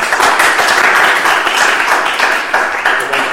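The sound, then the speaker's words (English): A crowd applauds steadily, many hands clapping in a dense, continuous patter that stays fairly loud throughout without any voices on top. “I know before all clapped out, I would like to congratulate again everyone involved,”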